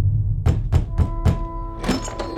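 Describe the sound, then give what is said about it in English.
Four firm, evenly spaced knocks on the door of a large, well-adorned house, dull and thudding, followed by a brief louder clatter and rattle. A low steady hum sits underneath throughout. “While the griffin was tearing the Arimaspians to pieces, a rather foolish young man named Hans was standing at the doorstep of a large and well-adorned house, gathering the courage to knock.”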